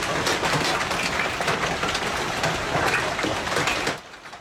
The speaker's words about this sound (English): Another summer storm pelted much of Calgary with loony-sized hail and flash flooding.